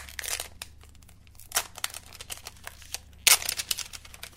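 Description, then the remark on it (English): Crinkly plastic film being peeled and pulled off a new Nokia X100 phone, with a run of crackling and tearing bursts, two louder rips near the middle and end, and no talking. “All right, there we go. All right, so plastic is off the phone.”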